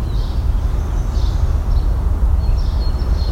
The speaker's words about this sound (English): Brown-headed cowbird in the distance.